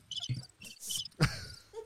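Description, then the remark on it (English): Cricket chirping in a quiet pause, a few short high-pitched trills repeating clear with no one talking, like the classic awkward-silence sound effect. “I'm not chasing crickets, bro.”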